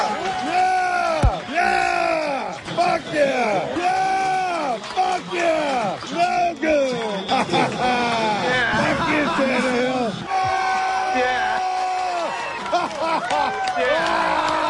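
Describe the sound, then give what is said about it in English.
A man screams and whoops wildly in a bar while cheering at a game, in long, strained, pitch-bending yells, loud and nearly continuous, with crowd noise and chatter churning underneath. “Here he is, just screaming like a maniac.”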